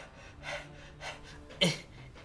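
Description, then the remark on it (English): A voice imitates the heavy panting of a character exhausted from jumping: three breathy, rasping huffs at a steady pace, the last one the loudest and sharpest, with no talking. “And you see that he's already panting.”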